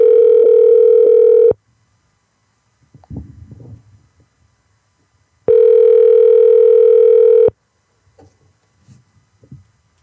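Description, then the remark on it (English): A loud, steady telephone dial tone as someone tries to call a grandmother sounds for about a second and a half, stops, then returns once more, with faint soft clicks and rustles in the gaps between the two tones. “I'm trying to call your grandma.”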